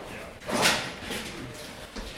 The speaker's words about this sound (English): were pulling down large stacks of bicycles, untangling them, and running them bike by bike deeper into the warehouse